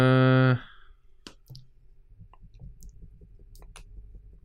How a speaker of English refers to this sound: I hear writing. Yeah, I'm writing. We're getting there. I'm writing something.